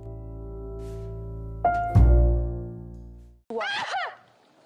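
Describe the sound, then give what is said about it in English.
A single loud, abrupt sneeze bursts out over a steady humming drone, followed moments later by a short, wavering vocal sound. “Bless you.”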